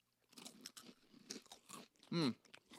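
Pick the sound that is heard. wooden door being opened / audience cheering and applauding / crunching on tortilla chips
crunching on tortilla chips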